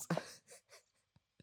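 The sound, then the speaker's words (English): A phone drops and clatters onto a hard surface: a sharp thud and rattle, then a few softer bumps and two small taps as it settles, fairly quiet. “Oh, no, the phone fell.”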